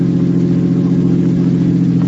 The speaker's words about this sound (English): Don't drive so fast